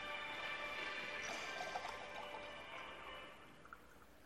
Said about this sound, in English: And the one that I want to show you first is we just take a glass of water, and we pour water into it.